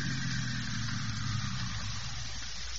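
A steady, low engine rumble from a car waiting outside idles continuously, with a broad hiss on top and no voices.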